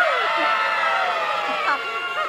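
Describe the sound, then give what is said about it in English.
A studio audience of children in the Wey Hey, It's Saturday studio cheering and shrieking together live, a dense, high-pitched wash of overlapping excited voices that stays loud and steady throughout. “And we've got a great bunch of kids here. Who are obviously prepared to cheer at anything I say.”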